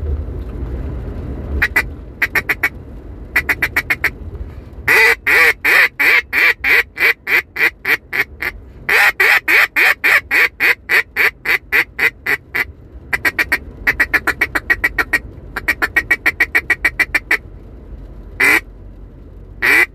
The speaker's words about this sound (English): Without further ado, guys, here we go. This is going to be a demonstration of the Beaver Creek Game Call Hen House double reed call. So here we go.